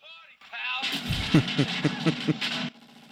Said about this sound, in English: Okay, that gun has some range.